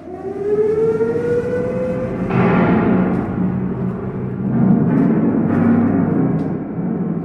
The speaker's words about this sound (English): when the air raid siren sounded in the centre of Cardiff, this was where people took shelter, and up to about, I believe, 1,800 people at any one time would be crowded into these pretty claustrophobic spaces.